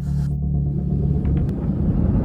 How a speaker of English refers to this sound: This is an electric bus.